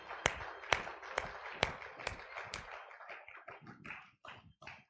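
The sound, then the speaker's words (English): A crowd gives Jesus a hand clap of praise during worship, a few sharp, steady beats about twice a second over a dense wash of many clapping hands, loosening into irregular applause that trails off. “Let's give Jesus a hand clap of praise right now.”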